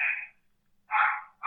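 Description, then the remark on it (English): The speaker's own dogs barking in short, sharp bursts: one bark, a brief pause, then two more in quick succession, fairly loud with no talking over them. “my dogs are barking.”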